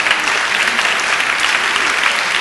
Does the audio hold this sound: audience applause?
yes